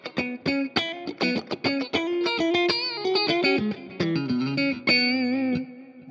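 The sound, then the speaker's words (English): An electric guitar with its humbucker coil-tapped for a bright, Strat-style single-coil tone plays alone: quick picked notes at first, then a run of sustained, ringing phrases with a slight effects shimmer. “And then you can get the Strat thing.”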